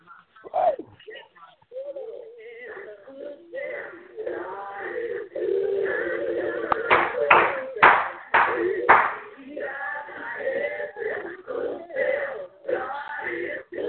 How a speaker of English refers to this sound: Yes, yes. I heard some clapping.